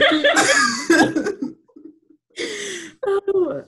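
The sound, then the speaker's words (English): A couple of drawn-out, croaky burps, the first long and wavering, then a shorter rough one followed by a brief voiced rasp, with small gaps of quiet between them. “What do we do if we have to burp?”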